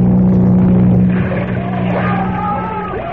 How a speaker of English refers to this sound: I'll wait here underwater until the speedboat comes along. Ah, there it is.